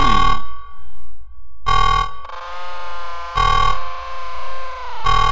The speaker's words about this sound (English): And you're not sure if it's just in your head or if it's everywhere, but everybody else hears alarms start blaring from within this computer.